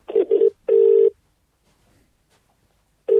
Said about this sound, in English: I love this bit where the phone's ringing. It's always quite tense, isn't it? Yeah, because no one's ever picked up.